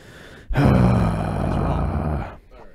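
A loud, deep engine rev from a stock Dodge Demon with non-modified exhaust bursts in suddenly, holds a rumbling, roaring exhaust note with a low throbbing drone for nearly two seconds, then cuts off abruptly.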